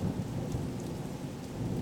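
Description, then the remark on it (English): Steady rain pours down with a deep, continuous rumble of thunder underneath, filling the whole short stretch with dense, low roaring noise and no voices. “Nothing left out, just the thunder and the sound of the rain.”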